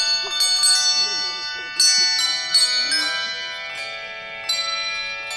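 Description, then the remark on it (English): Bell ringers ring bells in a series of bright, irregular strikes, their tones overlapping and ringing on between hits, with faint murmuring voices underneath, at the annual Christmas event at the General Grant tree, the nation's Christmas tree, with carolers and a flag and memorial wreath-laying ceremony. “A video captured the festive event with bell ringers, carolers, and a flag and memorial wreath-laying ceremony.”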